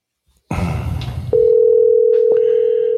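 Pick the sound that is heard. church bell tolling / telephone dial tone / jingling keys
telephone dial tone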